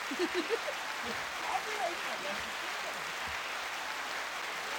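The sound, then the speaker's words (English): A clapping sound-effect track: a steady wash of many hands clapping, dense and even throughout, with a few faint voices murmuring underneath in the first couple of seconds. “I just added clapping to this. There's a track.”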